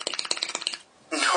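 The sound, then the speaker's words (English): A quick drum roll tapped out by hand, about a dozen rapid strikes in under a second, stops abruptly; after a short pause a burst of breathy noise follows. “No, that was a drum roll.”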